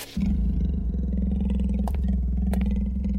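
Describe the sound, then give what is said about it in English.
Wolves growl deep and rumbling, loud, one continuous menacing snarl that carries on for a few seconds with a couple of brief sharp snaps cutting through. “Wolves can smell fear. Bye! And we hear them, too.”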